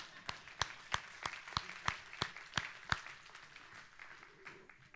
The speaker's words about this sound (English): Now I'll clap for myself.